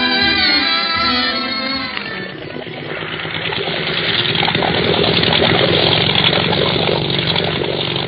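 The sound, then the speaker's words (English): A motor launch engine runs loud in Madeira. A droning, tonal whine in the first seconds thickens into a steady, dense roar that holds without pause. “Isn't this a swell boat”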